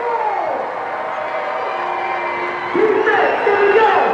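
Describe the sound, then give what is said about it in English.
A packed crowd at Brownson Arena cheers during a timeout in a four-point basketball game between the Mavericks and the Blizzard, a loud, steady roar with scattered whoops and shouts riding on top, swelling louder for the last second or so. “Crowd is alive.”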